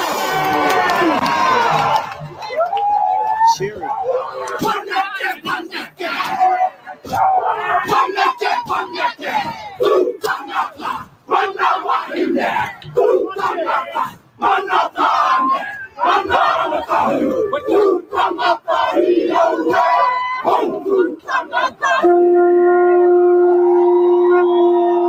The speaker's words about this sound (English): This is called a haka. And every time that you see one of these are pre-word chants that they talk about how they're going to kill you and dismember you, just so you're aware.